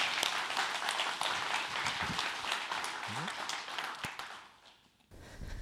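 An audience breaks into steady, dense applause, a loud wash of many hands clapping that holds for several seconds before quickly fading away at the end.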